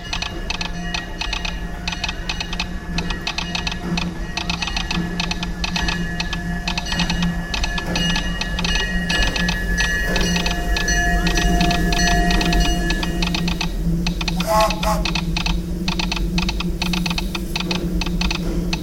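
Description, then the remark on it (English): Morse code heard at a Disneyland train stop, tapped out as rapid, irregular mechanical clicks, like a telegraph sounder, running steadily for about nineteen seconds over a constant low hum, with no voices. “So that speech that you just heard is this, and I have the Morse code as well, is this.”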